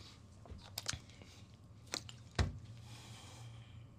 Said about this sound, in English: Let me take some water, because y'all ain't gonna like that.